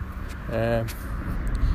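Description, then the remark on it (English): Steady low traffic rumble from cars passing the speaker on a road under a blue sky, continuous, with a brief voiced sound rising over it partway through. “Cars are passing me, and, well.”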